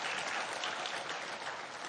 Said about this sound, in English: All right, everybody clap now. That seemed weird. There we go.